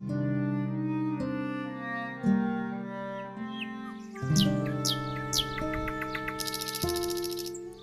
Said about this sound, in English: It was the nightingale, and not the lark, that pierced the fearful hollow of thine ear. Nightly she sings on yon pomegranate tree. Believe me, love, it was the nightingale.